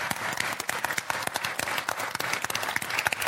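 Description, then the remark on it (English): An audience applauds steadily, many hands clapping in a dense, continuous patter that holds at an even, moderate loudness throughout. “Round of applause.”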